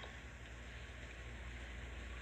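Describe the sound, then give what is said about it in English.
Steady, soft rain falling outside, a continuous even hiss with a low rumble underneath, with no voices. “Oh, bitch, it's raining.”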